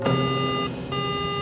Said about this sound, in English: The cockpit door alarm came on. The captain opened the cockpit door through a switch.